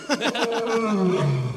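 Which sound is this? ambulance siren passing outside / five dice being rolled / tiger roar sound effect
tiger roar sound effect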